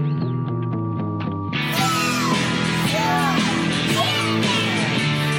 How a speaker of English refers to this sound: If you listen close, you can hear kids screaming.